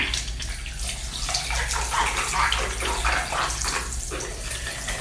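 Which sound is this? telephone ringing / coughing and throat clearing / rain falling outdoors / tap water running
tap water running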